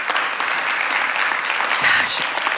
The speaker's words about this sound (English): When I will just take a little tangent since that moment just happened, clapping for Revive coming back in person.